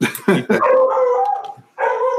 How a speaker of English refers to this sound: Uh-oh. Shut that damn dog out.